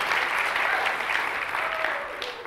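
Steady applause from an audience, a dense wash of many hands clapping at once, sustained and fairly loud throughout with no talking over it.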